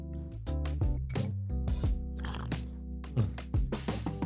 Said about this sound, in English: All right, got some lemon tea. Let me go ahead and take a quick sip.